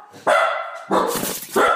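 A dog barks three times in quick succession, loud, each bark a sharp harmonic burst with brief gaps between them.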